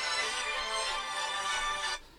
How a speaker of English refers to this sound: I think you should put your phone on silent. Again, if we were a really professional show, I would edit that bit out. But people now know what your ringtone is. I do apologise for that. Not putting a phone on silent before you record.